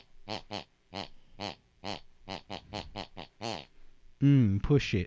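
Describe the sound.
A voice imitates a mother's snoring to a tune she listened to before bed: about a dozen short, nasal, pig-like snorts in a bouncy melodic rhythm, ending in a louder, rougher snort.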